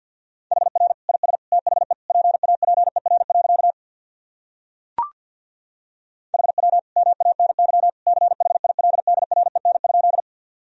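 Very fast Morse code sent at about 50 words per minute, sending practice sentences built from the top 300 words and abbreviations, a steady mid-pitched tone keyed in rapid dots and dashes, in two long runs split by a pause with a single click.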